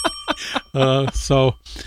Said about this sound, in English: Go ahead and ring that bell.